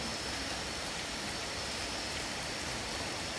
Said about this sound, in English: tune into your hearing, tune into my voice, and energetically, if you can also tune into this rain.